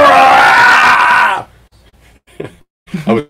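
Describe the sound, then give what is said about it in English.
A man lets out a loud, frightened scream lasting about a second and a half, then breaks off; a couple of short, quieter vocal sounds follow after a pause. “I was screaming.”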